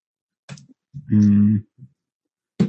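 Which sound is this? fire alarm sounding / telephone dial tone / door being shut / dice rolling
dice rolling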